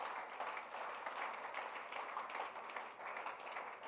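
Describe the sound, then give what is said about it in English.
An audience claps for the Lord together in a dense, steady wash of applause that holds at an even level for about four seconds, with no one speaking over it. “Give the Lord a clap that you are still his generation.”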